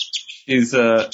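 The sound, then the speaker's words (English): A pet bird perched on a man's shoulder gives a quick run of high, thin chirps, then a person's voice comes in and talks over the last faint tweets. “The bird on Xavier's shoulder.”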